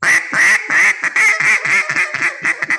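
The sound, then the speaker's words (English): A duck call blown loud in a quick, bouncing run of about ten coarse, raspy quacks imitating a boss hen mallard, with no talking. “You can kind of do a bounce on a boss hen.”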